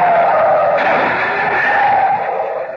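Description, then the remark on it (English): A loud, sustained tire screech lasts a few seconds, shifting in pitch as a car swerves on a road to avoid an oncoming car, then tapers off at the end. No voices. “It's lucky I was able to pull away in time.”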